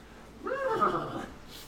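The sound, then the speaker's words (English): A person voices a short, wavering whinny, imitating a leader horse's neigh to the other horses. It is moderately loud, lasts under a second, and has no other talk around it. “What does the leader horse say to the other horses?”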